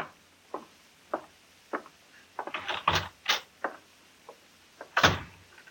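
A door is handled: a few soft clicks and shuffles lead into a cluster of louder latch and creak noises, then a single firm thud as it shuts. No one speaks.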